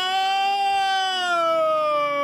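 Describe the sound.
A person imitates a horrified scream, vocalizing a loud, sustained wail that slowly glides downward in pitch, sounding much like a siren, with a steady tone held for a couple of seconds.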